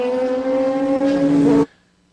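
A loud, steady race car engine drone with strong harmonic whine holds for about a second and a half, rising slightly in pitch, then cuts off abruptly into near silence, as the race leader, an E Production car ahead of a GT Lite car, goes by on the track.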